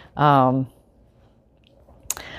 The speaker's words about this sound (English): Okay, here we go. Snipping. Okay. So I just look so excited about these scissors. Isn't that silly?